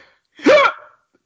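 A single sharp hiccup, an abrupt voiced yelp that jumps upward in pitch and cuts off quickly, standing alone against silence.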